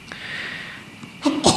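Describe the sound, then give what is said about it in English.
A single sneeze erupts at the end, a sharp nasal burst after a moment of quiet breathy hiss. It is fairly loud, with no talking around it. “Bless you again.”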